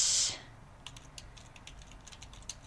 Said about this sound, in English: I'm sure you can hear me typing away.